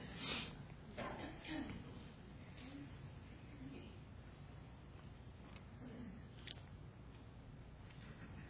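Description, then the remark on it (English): A few short, breathy sniffs from someone with a pollen allergy, spaced irregularly, over a faint, steady low background hum. “So you'll have to bear with me in this sniffing.”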